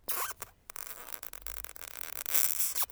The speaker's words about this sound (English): And we took a serrated plastic knife and mic'd it really, really close and just rubbed the knife across the tire tread. And it was creating kind of a little squeaky kind of sound, what you'd expect.